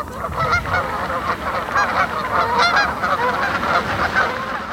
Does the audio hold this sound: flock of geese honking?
yes